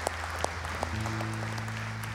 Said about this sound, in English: I want to welcome you here on this Sunday service. Thank you. And can we all give God a praise and a clap?